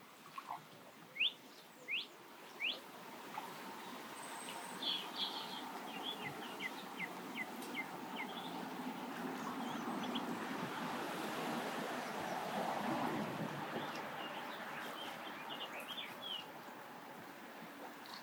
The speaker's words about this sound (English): they're having little arguments. Getting a bit cross with each other. Oh yes. Oh dear. And behind that rather unmusical sound, and the sound of the wind, which I'm sure you can hear too, is a song thrush.